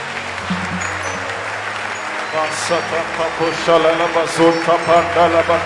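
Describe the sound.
A crowd claps hands while praying to God for help, in a steady, dense wash of sound, while several voices rise over it, praying and calling out loudly in the second half.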